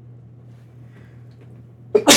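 A single sudden, loud sneeze bursts out near the end after a stretch of quiet room hum, sharp, with no talking around it.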